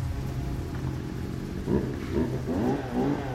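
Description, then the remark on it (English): A chainsaw drones steadily at a hotel, then revs up in several rising and falling bursts, its buzzing pitch swelling and dipping over a low rumble. “That is not a power vac. That's a chainsaw.”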